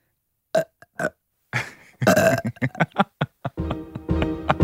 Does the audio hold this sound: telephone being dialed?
no